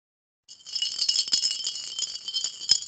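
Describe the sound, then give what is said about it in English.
Coins rattle and clink inside a container, shaken steadily for a few seconds with bright metallic jingling and a few sharper knocks, no voices present. “That'll get me going, you know, I love me coins. Frippence in there, I think.”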